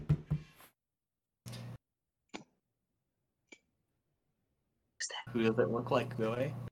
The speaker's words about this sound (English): You hear another knock on the door.